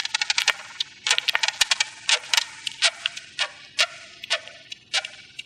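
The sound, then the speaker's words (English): Beetles chirping and clicking: a rapid, irregular series of sharp, bright ticks and short scratchy chirps, clustered in bursts with brief pauses, high-pitched and crisp over a faint low hum, with no talking. “After listening for a few minutes, suddenly I began to hear these little chirping and clicking noises, which are the distinctive sounds that they make.”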